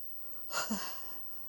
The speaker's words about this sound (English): Now it's the breathing also.